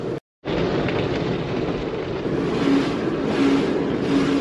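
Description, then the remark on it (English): An automatic car wash runs with a loud, steady roar of spraying water and machinery hum as a car is washed. It is continuous after a brief break at the very start, and no one speaks. “But first, I need to get my car washed.”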